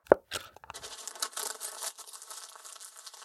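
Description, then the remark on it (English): A single soft knock, then paper rustles and crinkles steadily for a few seconds, fairly quiet, as a blindfolded officer reaches into a hand-cranked draft wheel and draws out a random slip bearing a local man's name and address. No one speaks. “This done, another officer wearing a blindfold reaches in the wheel and grabs a random paper, sealing some random man's fate.”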